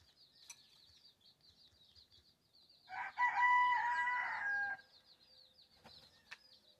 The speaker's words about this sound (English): Hear a chicken in my room.